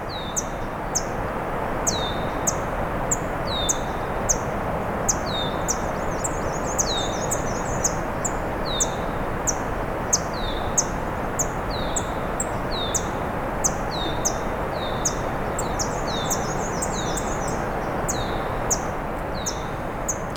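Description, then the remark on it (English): A black-and-white warbler sings a thin, high, squeaky series of repeated notes, with other sharp chips scattered throughout, over a steady hiss of outdoor background noise. “We also got black and white warbler.”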